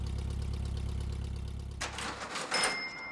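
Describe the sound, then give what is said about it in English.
A yellow Beetle car's engine idles, kept running for a quick getaway, with a steady, low, throbbing rumble for a couple of seconds, then gives way to a few louder rustling and clattering bursts, like a door or movement. “Get into the driver's seat and keep the car running so we can make a quick getaway if necessary.”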